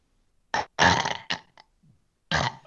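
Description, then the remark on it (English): A person imitates a burp with their voice, recreating the burp they voiced for a Disney attraction: several loud, rasping bursts in quick succession, a short pause, then one final belch-like blast. “The twist in the story is that Disney liked working with me so much, I actually got to be the voice of the burp, and I can redo it right now.”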